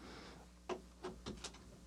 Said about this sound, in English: Who's that? No one. Someone keeps opening this door.